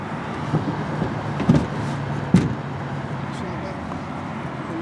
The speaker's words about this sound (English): Now he's getting in the car.